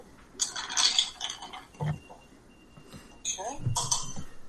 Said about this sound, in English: Right. Some ice. Chill it all down. We're stirring it so as not to knock the bubbles out. We want to keep some of that fizz from the lemonade.